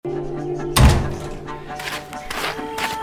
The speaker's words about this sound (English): I think we got some more footsteps here. Walking.